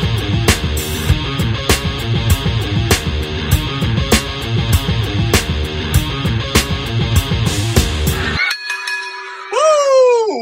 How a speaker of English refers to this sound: Folks, welcome back. You heard the bell ringing, so that can mean only one thing. You are back with the Wrestle Champs.